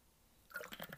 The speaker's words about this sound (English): Let me get a sip of water.